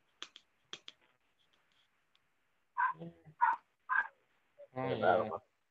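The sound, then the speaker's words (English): The speaker's dog barks four times in a short, uneven, loud burst, following a few sharp clicking sounds and a brief quiet stretch. “can only bark, bark, bark. Right? My dog.”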